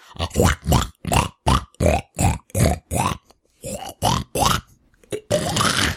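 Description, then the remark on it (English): A person's voice imitates a pig, producing a rapid, rhythmic string of about a dozen loud grunts and oinks with brief pauses between them, ending in a longer drawn-out snort. “Hold on, let me do some animal sounds.”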